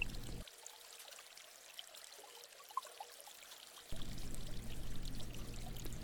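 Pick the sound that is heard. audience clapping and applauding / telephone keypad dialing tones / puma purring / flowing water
flowing water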